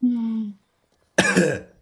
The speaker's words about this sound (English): You feel the need to cough, but you feel like you absolutely have to cough. Like there's something stuck in your lungs.